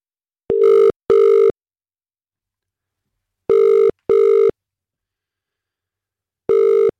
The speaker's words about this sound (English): Watch your phone now. We're going to make the call. We've got the number at random and we are dialing. Here we go.